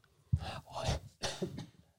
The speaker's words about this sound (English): Sorry. It's the cough's back.